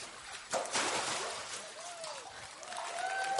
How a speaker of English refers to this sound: they're cheering for you because they know God is good.